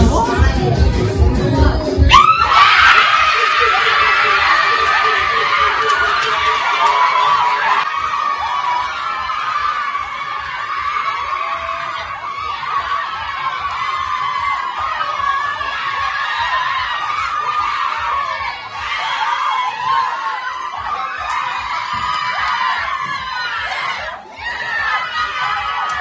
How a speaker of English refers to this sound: With one run required from the final delivery, Dupree's calmly flicked to midwicket to get the single, and the room with the Windies women erupted into loud cheers.